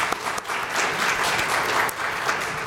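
A church audience applauds steadily for having collected 440 pounds of food and $250 in cash donations, dense overlapping claps forming a loud, even wash of sound that holds for the whole stretch without a break.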